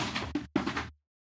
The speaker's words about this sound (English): Sorry, my cat just knocked books off my bookshelf. That's what you heard.